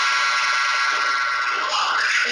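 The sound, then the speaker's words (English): A clock rings in a played-back recording, a continuous, harsh, high-pitched jangle that holds steady and loud for the whole stretch, with no pauses and no voices over it. “That's a clock.”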